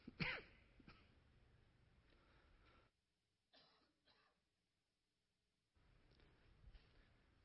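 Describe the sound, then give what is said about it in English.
A sharp cough bursts out at the start, followed a few seconds later by two shorter, softer coughs, with a low background hiss and no talking. “I've been fighting a cough for about 6 weeks now.”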